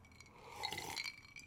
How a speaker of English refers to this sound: Pouring a scotch.